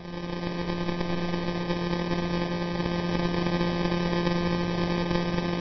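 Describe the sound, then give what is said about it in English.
A millisecond pulsar's pulses, sped up to 174 per second, blur into a steady, low-pitched buzzing drone with rich harmonics, holding even and unbroken for the whole stretch with no talking. “This very sort of high-pitched buzz, a bit like a bee sort of buzzing around the space.”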